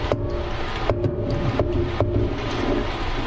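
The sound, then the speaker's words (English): Excess oil drips from a fryer basket held just above the fryer back into the hot oil, a few sparse, soft taps over a steady low rumbling hiss, with no talking. “I'm going to hold it up just a little bit above the fryer and let the excess drip back down into the oil.”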